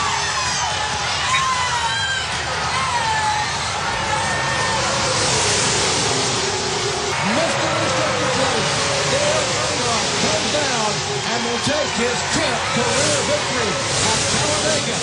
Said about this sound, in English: And Earnhardt has gone for the lead! And listen to this crowd of 170,000 strong!